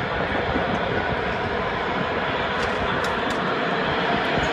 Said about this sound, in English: So there's the sounds of the Packers practicing with, it sounds like vuvuzelas off into the distance. My God. I hate vuvuzelas.